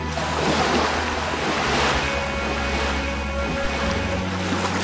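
Ocean waves wash and break against the shore in a continuous, steady roar, with broad surf noise filling the scene and a faint tonal hum in the background. No voices.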